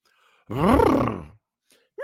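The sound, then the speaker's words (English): A person imitates a horse with a single drawn-out, wavering vocal whinny whose pitch rises and falls, fairly loud, followed by silence and the start of another voice sound. “That's a horse noise, isn't it?”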